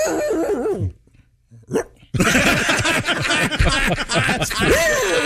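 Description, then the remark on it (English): A person imitates a dog barking at night with rough, growly vocal barks, pauses briefly, lets out one final short bark, then loud, dense noise takes over for the rest. “How come it when dogs bark at night, they have to get that last bark in?”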